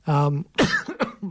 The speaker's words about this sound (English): I'm really sorry. One day I will stop coughing. I swear, I will stop coughing.